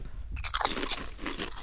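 Crisp, crackly crunching of potato chips, tasted as slightly stale, being bitten and chewed during a chip tasting: a dense burst of brittle snaps at moderate loudness with no one speaking.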